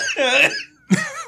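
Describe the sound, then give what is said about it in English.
Two loud coughs separated by a brief pause, the first longer and strained with a squeaky, voiced edge, the second a sharper hacking burst. “We need a cough button bad.”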